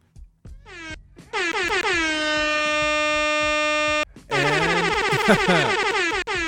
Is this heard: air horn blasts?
yes